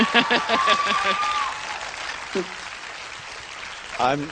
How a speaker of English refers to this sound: I'm sorry to interrupt your clapping with so much hatred,